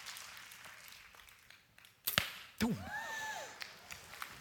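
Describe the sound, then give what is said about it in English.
An arrow is shot from a bow as a demonstration during a church sermon: a sharp snap of the release, then a quick thud and a brief airy whoosh with faint ringing, over quiet outdoor background. “Come on, let it fire again”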